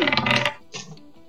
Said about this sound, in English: So my dice fell into my box of cereal.